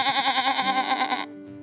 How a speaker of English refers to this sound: Or whatever noise that kind of animal makes, goat or a sheep or something.